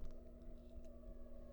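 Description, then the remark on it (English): The West Brownsville town siren drones, a steady, faint wailing tone held without a break under a low rumble of background noise, with no voices. “It's the West Brownsville fucking siren.”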